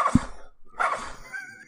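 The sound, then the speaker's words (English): A person imitates a dog with two short, gruff barks separated by a brief pause, moderately loud, with a faint tonal tail after the second. “So one bark for yes, two barks for no.”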